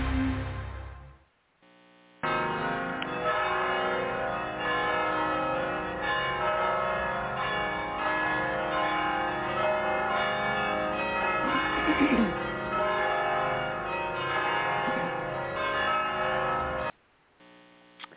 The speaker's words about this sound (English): Those are those wonderful mission bells down in San Juan Capistrano. They ring them if somebody gets married, and they ring them on other types of occasions.